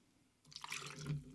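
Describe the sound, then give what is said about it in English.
Liquid pours into a shot glass in a short burst, about two shots' worth, starting abruptly after a moment of quiet and splashing brightly with a rising, gurgling tone before easing off. “I'll show you in the shot glass here. About 2 shots.”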